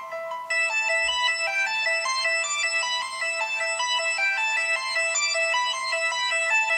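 Recorded bell-like orchestral music plays loudly and steadily, with bright, ringing repeated notes layered over sustained tones, and no voices.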